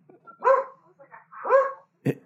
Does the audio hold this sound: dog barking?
yes